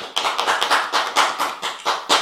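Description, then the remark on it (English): A crowd claps as a clap offering to the Lord, many hands striking in a dense, slightly uneven rhythm with bright, sharp slaps. The applause stays fairly loud throughout, with no voices over it. “So someone give the Lord a clap offering.”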